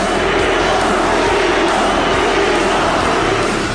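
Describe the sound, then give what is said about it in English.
An arena crowd at Madison Square Garden in 1988 chanting "Weasel, Weasel", a loud, dense wall of many voices blending into a steady roar that holds at the same level for the whole few seconds. “The crowd chanting Weasel, Weasel.”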